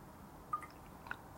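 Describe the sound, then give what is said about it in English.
Someone takes a quiet sip of water, with two soft, wet swallowing clicks amid otherwise hushed surroundings. “Pardon me, I'm gonna take a drink of water.”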